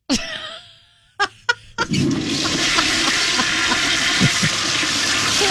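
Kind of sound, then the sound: household object, toilet flushing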